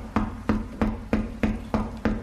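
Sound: banging on a door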